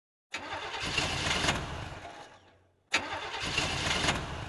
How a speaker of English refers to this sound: Oh, no! The engine's not starting. Rats! Well, I better call for roadside assistance. What? My battery just died.